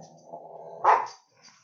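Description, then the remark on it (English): A dog growls low and steadily, then lets out a single sharp bark before falling quiet, moderately loud. “Especially these dogs right now.”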